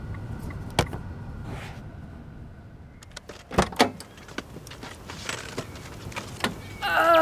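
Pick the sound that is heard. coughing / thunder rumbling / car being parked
car being parked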